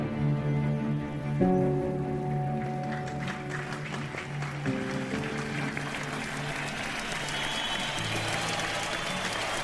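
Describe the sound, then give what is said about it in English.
A crowd of nearly 3,000 people gathered outside the White House claps and cheers for Lincoln on April 10, 1865, in a steady, dense wash of applause, with held musical chords sounding underneath that shift every few seconds. “On April 10, 1865, Lincoln stood before a cheering crowd of nearly 3,000 people gathered outside the White House.”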